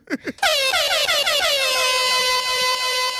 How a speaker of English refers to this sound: Actually, Airhorn.